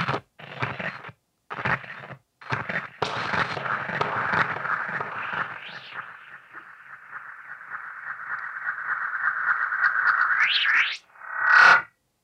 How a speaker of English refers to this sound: So, yeah, that's just this little delay pedal. So I use one reverb and one delay on the auxes.